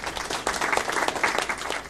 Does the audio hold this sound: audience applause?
yes